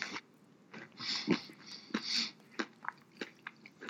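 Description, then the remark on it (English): Crunching of a very crunchy, thoroughly roasted almond being chewed, a series of sharp, irregular cracks and grinding bites over a few seconds, fairly quiet with no talking. “It's a very crunchy almond, very thoroughly roasted.”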